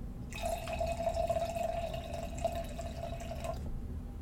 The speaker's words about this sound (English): So before I get started too, I am going to add a little bit to my glass because you can't miss this. It sounds just like you're pouring it from a bottle. Maybe even better. Listen.